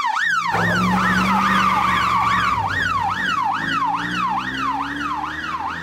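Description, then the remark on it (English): A police siren wails in a rapid rising-and-falling pattern over a steady engine rumble, the pitch sliding gently downward as the vehicle pulls away, loud throughout. “Exits in police car.”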